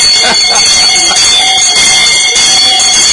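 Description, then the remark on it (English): A bell is rung repeatedly, a loud, continuous ringing with steady high-pitched metallic tones sustained for about three seconds without pause. “I rang the bell for you multiple times.”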